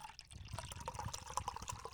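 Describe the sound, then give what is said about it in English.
Liquid pours steadily into a glass for a couple of seconds, a continuous splashing gurgle with a slight rising ring as the glass fills. “That was supposed to be a sound effect of the pour.”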